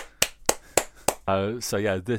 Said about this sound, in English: Very well done. I think that's a round of applause there. Excellent.